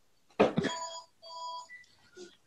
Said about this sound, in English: Sorry, that's my other phone.